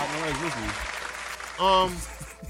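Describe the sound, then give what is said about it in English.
A brief round of applause for the temperature reaching 18 degrees, a dense patter of clapping that stays fairly steady for a couple of seconds, with voices talking and calling out over it. “Why am I giving that a round of applause?”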